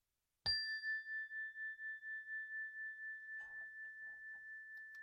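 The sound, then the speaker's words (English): A single chime is struck once and rings out clearly, its bright, pure tone shimmering and slowly fading over several seconds, with faint rustling late in the ring. “As we listen to the chime, let us remember our connection to each other and the world around us.”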